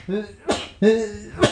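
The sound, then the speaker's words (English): Two sneezes in quick succession, each a short voiced intake that breaks into a sharp, hissy burst. Both are fairly loud and nobody talks over them. “Bless you.”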